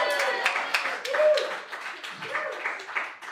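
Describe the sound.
A crowd at a hosted live night gives another round of applause for two performers, steady dense clapping that carries on for a few seconds, mixed with whoops and voices calling out over the top.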